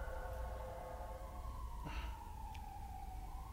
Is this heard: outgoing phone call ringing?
no